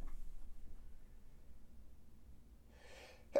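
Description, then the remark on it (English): A breathy inhale builds for a moment, then a sudden sharp sneeze bursts out at the very end, alone with no talking. “Like, I think I'm about to sneeze.”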